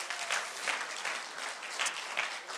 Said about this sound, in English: Can we give him a hand clap of praise for what he does?